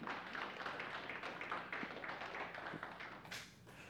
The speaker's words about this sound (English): So we're quiet, folks, but we're going to clap today. So we clap.